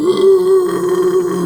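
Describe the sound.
A voice imitates a band's slurred, drunk-owl-like hooting vocals: one sustained, low, wobbling vocal tone with a throaty, groaning edge, held steadily loud for about a second and a half without words.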